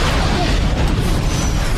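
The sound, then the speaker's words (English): A loud, roaring explosion in the audio of a paintball game fills the whole moment, a dense rumbling blast that holds steady without fading, heavy, with no voices present. “Wow, explosion.”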